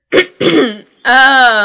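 A woman clears her throat loudly: two short rasping bursts followed by a longer voiced hum, with no speech around it.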